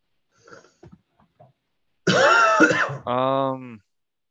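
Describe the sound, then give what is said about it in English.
A loud, rasping cough bursts out, trailing into a short voiced, groaning tail. It is preceded by a few faint, soft clicks and breaths. “Did you hear that cough?”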